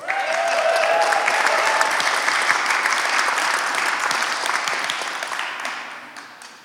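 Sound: audience clapping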